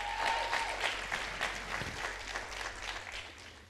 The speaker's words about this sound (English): Clap your hands for a God that is great.